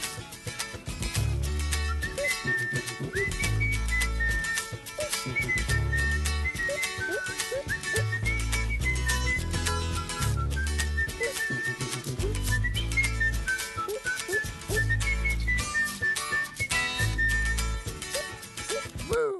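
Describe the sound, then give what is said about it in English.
A bright whistled melody rides on top of an upbeat, full-band pop song, with steady thumping bass and drums keeping a bouncy rhythm throughout. “One of my regrets in life is the fact that I can't whistle well enough to whistle along with that song.”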